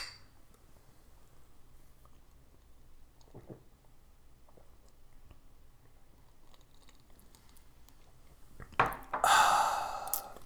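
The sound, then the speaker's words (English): After a long near-silent stretch, glasses clink together in a toast near the end, a sudden bright burst with a brief ringing edge before it trails off. “Once the glasses clink, it's time to stink.”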